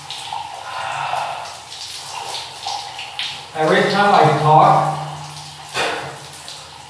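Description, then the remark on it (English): Water sloshes and splashes softly around someone standing in cold water, a steady churn that continues under a man's talking and some heavy breathing. “So I'm just standing in the cold water right now.”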